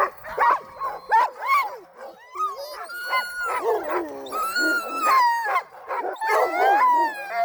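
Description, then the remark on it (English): Sled dogs whimper and yip nonstop, high wavering whines overlapping with short sharp yelps, fairly loud, with no one talking. “This week at Motown, since I've been back, it's been not so many training runs at all, really just giving the dogs a rest and a chance to get their energy back for this weekend,”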